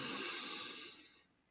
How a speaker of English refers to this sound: So smell the roses, blow out the candles is a good technique to teach your kids. Deep breath through the nose.